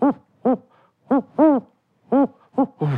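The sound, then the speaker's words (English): A person's voice imitates a snowy owl, giving a series of short, hooting calls in uneven groups, loud, with brief pauses between them and no other talking. “This is my impression of a snowy owl.”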